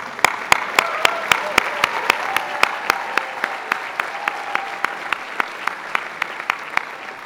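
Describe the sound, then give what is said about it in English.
A crowd at a Harvard University commencement applauds a class steadily for several seconds, a dense wash of clapping with a few sharp individual claps punching through in a regular beat, and faint cheering voices underneath. “Let's have a round of applause for that class again.”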